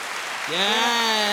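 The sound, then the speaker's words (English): A short round of dense crowd clapping played as an applause sound effect, a steady hiss-like patter, joined partway through by a sustained voiced tone, like a cheer, that holds to the end. “Let me hit the round of applause for that one.”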